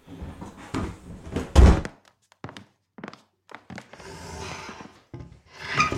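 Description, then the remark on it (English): A Foley recording of Batula's heavy wooden trunk being dragged around: it scrapes and squeaks in short uneven pushes, with a loud hollow thunk partway through and rasping wood friction near the end. “Batula's trunk gets dragged around, and I recorded some wood squeaking and scraping noises.”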